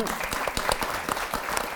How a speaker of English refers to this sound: And you created those wonderful lecterns that were used at the Paralympic Games, yeah, which I think deserves a round of applause more than anything else.